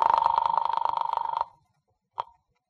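A telephone rings on an outgoing call dialed to an office, a rapid, trilling bell for about a second and a half, then falls silent before a single short blip of sound. It is clear, with no talking.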